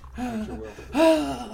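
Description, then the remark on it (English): Heavy, strained breathing into the mic from a person trying Lamaze breathing to relax, a couple of drawn-out voiced breaths with a louder, groaning exhale near the end. “You're doing a lot of heavy breathing.”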